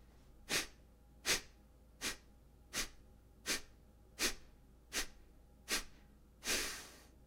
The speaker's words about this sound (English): So that's Kapalabhati, active exhale, passive inhale, pulse of the stomach in on the exhale. And I'm doing that breathing technique every day.